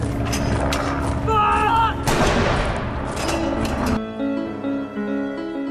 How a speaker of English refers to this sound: World War 13-pounder guns. These very old and very loud guns are used for royal salutes.